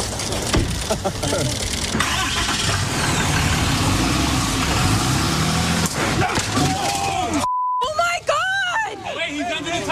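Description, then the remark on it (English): A Dodge Ram 2500 pickup truck engine rumbles amid a crowd of paparazzi photographers chattering with overlapping voices, with a brief cutout near the end before several people call out loudly. “He was in a truck, but, I mean, these photographers wouldn't leave him alone.”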